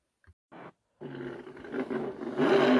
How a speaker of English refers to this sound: Race cars hitting the streets of Chicago for the first time Tuesday. NASCAR driver Bubba Wallace taking off in his.